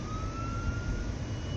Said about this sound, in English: Oh, we got an ambulance over here. Oh, ambulance going the other way.